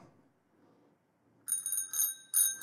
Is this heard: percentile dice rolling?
no